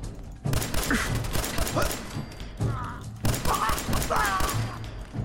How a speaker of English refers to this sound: Emptied my entire magazine on that. I'm not being very efficient with my bullets.